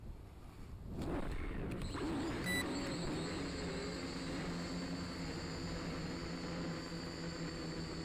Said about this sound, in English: So here's one cool thing that does, and I'm going to do this, and I don't recommend doing this with just any drone, but this one will do it. Here we go.